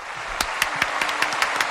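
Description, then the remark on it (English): An applause sound effect played in a studio: sharp, steady claps, about four per second, ring out loudly over a constant bright hiss of crowd noise, with no talking. “Very aggressive applause.”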